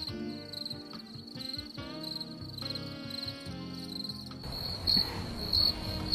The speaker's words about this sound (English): That's where the crickets come in.